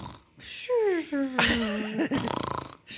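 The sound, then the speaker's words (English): A person vocally imitates an exaggerated cartoon snore: a rising, whistly pitched inhale followed by a rattling, fluttery exhale, fairly loud, heard alone. “I do love when cartoons snore in this way.”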